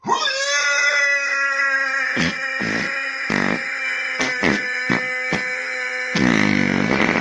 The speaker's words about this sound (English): I am going to tell you, I believe that's 100% fake, but it's still a fart. I think this is what he does. I'm almost positive that that was a fake fart.